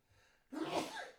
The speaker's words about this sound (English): Bless you. We got some real sneeze attacks up in here.